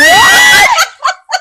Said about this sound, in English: Why did I just scream? They're going to hate me for screaming in this mic. That shit was funny, though.